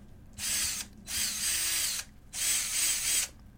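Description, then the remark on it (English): A power drill whirs in three short, loud bursts, each lasting about a second with brief pauses between, steady in pitch, with no talking. “I just imagine just a dildo on the end of a drill.”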